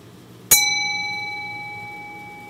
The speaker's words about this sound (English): And there you go, we get a nice chime that certainly sounds better than any beep or buzz I'm gonna get out of the little speaker that's built onto the clue there.